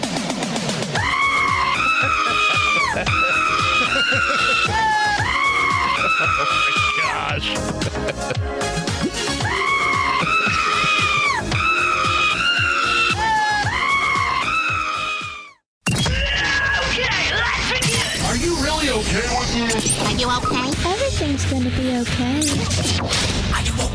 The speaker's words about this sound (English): I think we need to have the remix featuring the Screaming Goat.